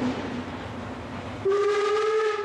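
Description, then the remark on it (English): A train rumbles steadily along the tracks. Halfway through, a loud, sustained whistle blares and holds over the continuing clatter, with no one speaking. “When O'Connell and the team travelled to play regional matches, they went by train at night with the lights out to avoid bombardment by Franco's warships stationed at sea.”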